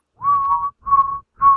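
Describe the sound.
A man whistles a short tune, three sustained clear notes around the same pitch separated by brief pauses, with no talking.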